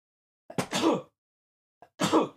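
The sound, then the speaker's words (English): Two loud sneezes about a second and a half apart, each a quick sharp intake followed by an explosive, breathy burst, with silence around them. “I'm actually going to double check that because I have to sneeze.”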